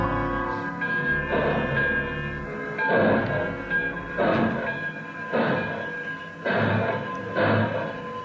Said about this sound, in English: The last thing I see as the train picks up momentum and speeds out of the station is Comrade Culver standing on the platform and smiling goodbye.